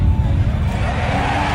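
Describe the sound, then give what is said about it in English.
A dense, steady roar of a large crowd at a fight cheering wildly, loud and sustained throughout with heavy low rumble and no distinct individual voices standing out. “You hear maybe a bone or two crack in this thing's ribs, and the crowd loses their minds.”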